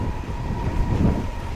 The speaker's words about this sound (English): After sitting on the train for 10 minutes, we pull out of the station.